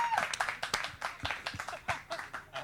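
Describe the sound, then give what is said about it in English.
An audience applauds artists Michael Christian and Kate Rodenbush at a talk, a dense, steady patter of many hands clapping at once, fairly soft in level and continuing throughout without any clear speech on top. “Can we have a round of applause, please, wherever you are?”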